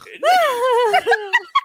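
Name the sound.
voice imitating snoring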